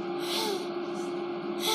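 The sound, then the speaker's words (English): A voice imitates an expiratory wheeze as heard when listening to a patient: a steady, whistling, slightly musical exhale with a breathy hiss, fairly loud for under two seconds, with no other speech. “Wheezing is expiratory. So you listen to the patient and it's...”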